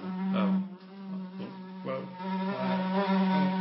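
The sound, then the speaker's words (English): A fly buzzes continuously with a steady, low droning hum, its pitch wavering slightly as it moves, fairly loud and alone without any talking. “Some kind of fly.”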